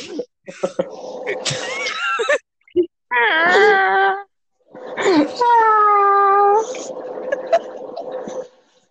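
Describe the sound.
A voice imitates a cat with drawn-out, wavering wails and yowls in several loud bursts, separated by short pauses, with a low steady hum running underneath.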